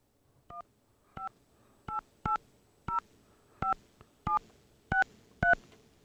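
A touch-tone phone number being dialed: nine short, crisp dual-tone beeps in a steady, slightly uneven rhythm, close and clear with no talking.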